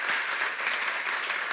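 Steady applause from a church audience for the volunteers of the Community of Hope Kids ministry, a dense crackle of many hands clapping at once, sustained at an even, moderately loud level without a break and with no voices on top.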